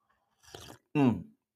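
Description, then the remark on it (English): A short slurping sip of hot coffee with sweet oat milk creamer, followed right after by a brief satisfied voiced exhale, with no talking. “I'm going to have a sip of this coffee so I can get, I know you guys want these gems, so I'm going to go ahead and drop something on you.”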